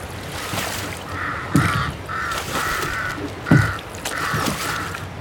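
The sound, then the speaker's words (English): Harsh caws from a flock of ravens flying overhead repeat in a loose series of five or six calls, each a raspy, mid-pitched croak, with a couple of sharper thumps and a steady background rush underneath. “Flying above the chaos was a flock of ravens.”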